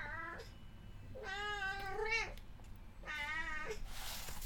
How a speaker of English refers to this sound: You may have heard my cat Mermenfrau in the background there.